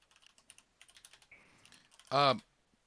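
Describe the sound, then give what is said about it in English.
Rapid, irregular clicking of keys on a computer keyboard for about two seconds, fairly quiet, followed by a sudden short, loud tonal squeal. “So I'm just typing.”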